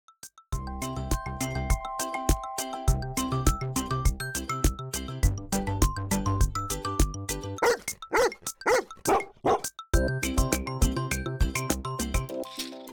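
Several quick, sharp barks from sled dogs burst out in a rapid cluster partway through an upbeat musical jingle, with the music continuing before and after them.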